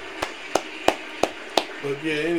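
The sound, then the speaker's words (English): Five sharp, evenly spaced hand claps ring out in a steady rhythm, each a crisp, bright snap, followed by a man starting to talk at the very end. “Got to give some claps to that, man.”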